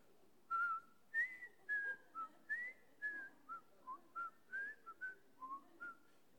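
A person whistles a bouncy, tuneful melody of about a dozen short, clear notes at a steady pace, close and fairly loud with no talking.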